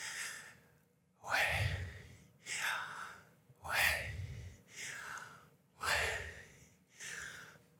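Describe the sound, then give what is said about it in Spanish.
Deep breaths drawn in and let out in a slow, steady rhythm, about six airy breaths with brief pauses between them and no talking. “Y ellos dicen, cierre sus ojos y respire.”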